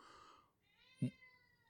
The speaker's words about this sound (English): You goddamn cats, man. I'm going to have to put her out.